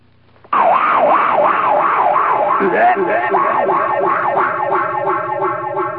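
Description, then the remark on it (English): A voice imitates a fungus eating through a watermelon patch: a loud, continuous warbling wail that rises and falls rhythmically like a siren for several seconds, with no other sounds. “And that was the sound of a fungi or a fungus or a fungi eating its way through a watermelon patch.”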